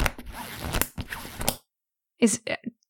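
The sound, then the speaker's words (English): A big book, the Indo-European Cognate Dictionary, being lifted and handled: about a second and a half of crisp scraping and rustling bursts, then a short pause and a few brief voice sounds. “No, it's a big book.”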